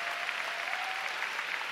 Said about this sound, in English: Oh, come on, give God a big hand. Oh, you want to clap tonight? Come on, let's give God a big clap.